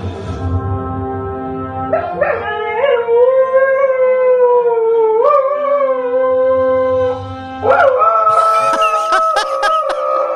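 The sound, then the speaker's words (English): A dog howls a wavering, tune-like melody, singing a TV theme song, in long sustained notes that slide up and down, loud, with music playing underneath and growing busier near the end. “a dog sings the theme to Star Trek”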